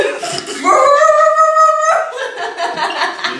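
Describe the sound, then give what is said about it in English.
A person, doing a dare to bark for 15 seconds, imitates a big dog, giving a loud, drawn-out bark that rises and holds for about a second, surrounded by rougher growly vocal noise. “Bark like a bigger dog.”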